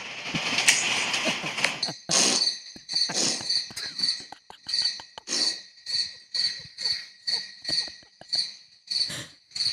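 Crickets chirp in a steady, rhythmic pattern from a video used for falling asleep, with bright, shrill trills pulsing roughly twice per second, fairly loud, after a brief burst of noise at the start. No one speaks.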